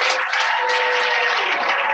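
Steady, dense applause from an audience welcoming a guest being introduced, many hands clapping at once into a loud, continuous wash of sound with no voices standing out.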